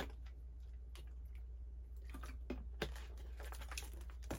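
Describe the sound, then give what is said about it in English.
Someone takes quiet sips of spring water, with soft gulps and small wet clicks of swallowing spread irregularly over a low steady hum, no talking. “Ah, that's some good water right there.”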